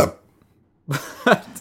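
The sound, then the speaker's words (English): A quick, throaty burp breaks a brief silence: two short guttural bursts, fairly loud, with a trailing sound at the very start and no talking. “But anyway, I guess we're not burp blind though. That was real.”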